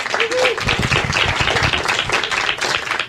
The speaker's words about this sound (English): Okay. Well, you win. Thank you very much. Good work. A round of applause.